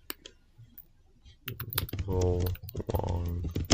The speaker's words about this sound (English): I'm actually typing all caps.